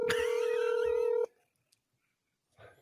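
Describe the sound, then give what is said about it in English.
An outgoing phone call's ringing tone sounds once, a steady electronic purr lasting just over a second, then cuts to silence before a faint brief rustle at the end. “He texted her and told her not to answer the phone.”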